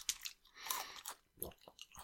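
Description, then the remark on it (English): Loud, crunchy chewing of large pieces of fried chicken, with several sharp bursts of crackling bites in an irregular rhythm, then softer munching. “That's loud food.”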